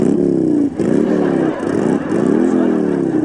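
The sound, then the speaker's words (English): A motorcycle being ridden inside a house bedroom revs loudly, its pitch rising and falling in several repeated surges with a rough, rattling drone throughout. “I thought you were going to talk to him about riding that motorcycle in the house.”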